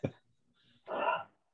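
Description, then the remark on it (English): A man's voice mimics a dog barking: a quick gruff burst, a brief pause, then a longer, rough, throaty woof that trails off into silence. “I'll be here all day. I bark.”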